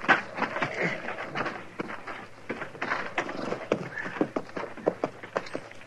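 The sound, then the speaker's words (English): Horses' hooves clip-clop at a slow walk as the horses are led to a lean-to at a shack, a steady but uneven clatter of many overlapping hoofbeats, with no voices. “Let's leave our horses here in the lean-to”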